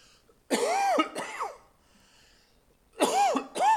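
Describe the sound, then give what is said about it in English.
A person coughs in two quick pairs, each harsh, voiced burst followed by a shorter one, with a pause of near silence between the pairs. “Did we hit the cough button on that?”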